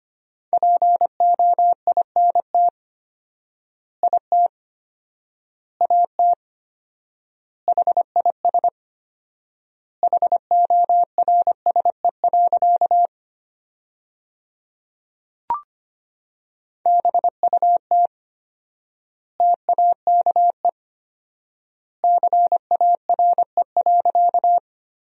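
Morse code practice sent as a steady mid-pitched tone at 25 words per minute with four-times word spacing, sending sentences built from the 300 most common words: quick dits and dahs in clustered bursts separated by long silent gaps, with no voices.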